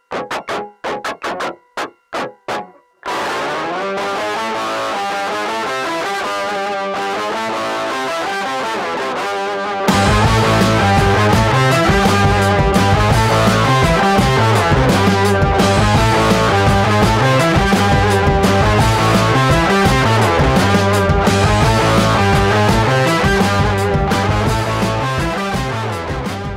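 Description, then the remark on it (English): Brooding cinematic music with echoing, reverberant tones opens on a choppy, stuttering burst, then settles into layered sustained chords before a heavier, louder bass-driven section kicks in and continues steadily. No voices. “This one's got weird echoey sounds in it, and it's just kind of, it evokes some goodness with this.”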